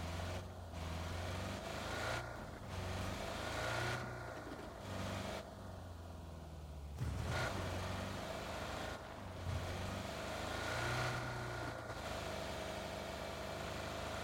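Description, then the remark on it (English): A car engine hums steadily throughout, a low droning rumble with slight shifts in pitch as it drives, fairly loud with no one speaking. “You want to ditch the car here and run up the hill?”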